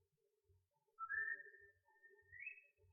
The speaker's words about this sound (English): Got the whistle. Yep. I'm into the overture.